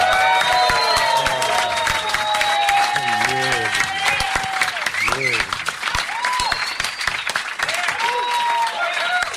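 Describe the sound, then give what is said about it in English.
Sustained, dense audience applause at New York Podfest as Dick Cavett is introduced, with whoops and cheers rising through it and brief voices and shouts breaking out over the clapping. “See, only two applauders are standing.”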